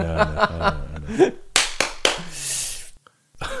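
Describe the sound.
A handful of sharp hand claps, about three or four spaced slightly unevenly, ring out loudly right after a stretch of voiced laughter or chatter, followed by a brief silence.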